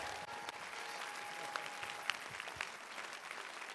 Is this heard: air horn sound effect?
no